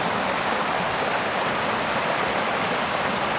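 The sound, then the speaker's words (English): A small waterfall by a boggy footpath track rushes steadily, a loud, continuous hiss of falling water with no pauses and no voices. “Oh, it's a waterfall.”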